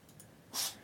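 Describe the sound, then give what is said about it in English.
A dog named Star-Lord gives a single short, sharp sneeze, a quick breathy burst of air that stands out clearly against otherwise quiet surroundings with no talking. “Bless you, Star-Lord.”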